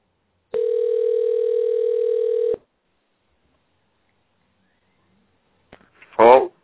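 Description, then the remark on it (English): One steady two-second ringback tone of an outgoing phone call, followed by a few seconds of silence before a brief voice answers on the line. “Come on, …. Answer the phone, buddy. Answer the phone. Try it again.”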